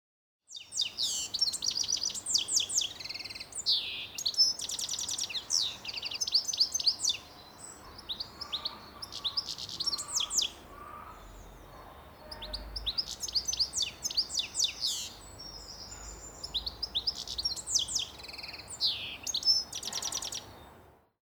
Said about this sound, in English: Here's another goldfinch having a sing.